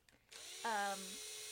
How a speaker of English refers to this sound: Do you mind? I have a drill.